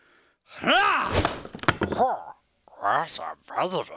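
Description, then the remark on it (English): A sword hacks into a massive, thick-barked tree trunk with a quick run of dull, heavy thunks, surrounded by loud wordless vocal grunts and gasps with a rising-and-falling pitch. “demonstrate on massive tree. Notice the thickness of the bark. I know that typical tool for tree cutting is axe, not sword.”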